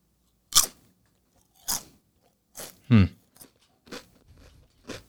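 Crisp crunches of someone biting into a thin potato chip, about six sharp bursts at uneven intervals with quiet gaps between, one accompanied by a brief low vocal murmur.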